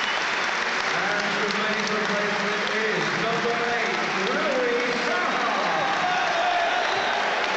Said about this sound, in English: Well, it's the end of Jermaine Beckford's full Everton debut, because he's being replaced by Louis Sahar. Warm applause from the Evertonians.